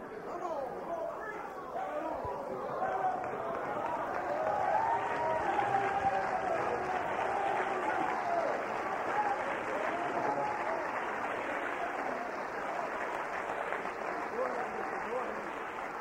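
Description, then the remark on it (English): A large crowd applauds and shouts together in a steady, dense roar of clapping and raised voices that holds at an even loudness throughout, with no single speaker standing out. “Now, I don't want you to quit shouting. Please don't quit shouting.”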